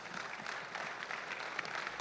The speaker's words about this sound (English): Let's give one more round of applause for all of these guys that shared their hearts with us today.